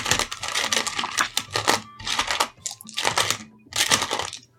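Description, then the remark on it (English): Dice rattle and clatter in several quick bursts of clicking, shaken in a hand or cup with short pauses between shakes, fairly loud and with no talking. “All right, I can hear dice getting ready.”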